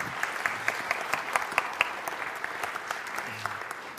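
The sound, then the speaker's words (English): A church audience applauds steadily for several seconds as two members are welcomed up to share, a dense patter of many hands clapping at a moderate level with a few sharper individual claps standing out. “Let's give them a round of applause for just being willing, right?”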